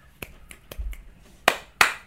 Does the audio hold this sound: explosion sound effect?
no